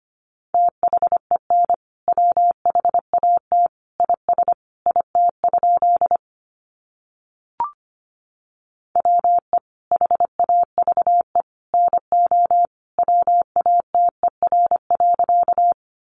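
Morse code tones at 25 wpm sending sentences made from the top 100 words: a single steady mid-pitched beep keyed in rapid dots and dashes, grouped into bursts, with a pause and a brief click midway. No one speaks.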